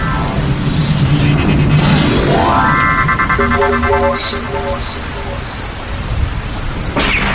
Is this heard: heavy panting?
no